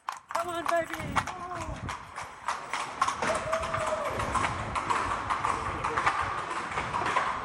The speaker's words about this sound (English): The pathway is only really about 15 feet wide, and you share it with the horses, clip-clopping down the stone path.